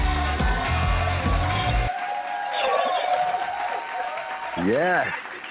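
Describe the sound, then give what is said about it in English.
A studio audience claps and cheers steadily for several seconds at the opening of the show The Perfect Zone, a thick wash of applause with a brief burst of music at the start and a rising whoop near the end. “Keep on clapping. That sounds good.”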